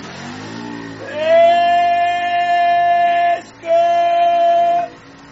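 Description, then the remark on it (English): A small scooter engine whines loudly, revving in two sustained high-pitched bursts separated by a brief dip, over a low background rumble, in streets of whitewashed houses so narrow only scooters can pass, in the island village of Scari. “Whitewashed houses line streets so narrow that only the scooters can pass.”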